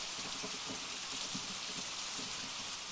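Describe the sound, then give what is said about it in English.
Steady, heavy rain pours down in a storm in a continuous dense hiss, with scattered low drops and patters on surfaces. The downpour stays even and loud throughout, with no voices. “What was left of it had been washed away by the rain.”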